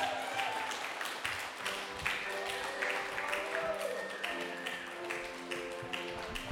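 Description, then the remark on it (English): An audience claps steadily, a dense patter of many hands sustained at an even level throughout, with faint voices mixed in underneath. “keep it going for her. Clap for her.”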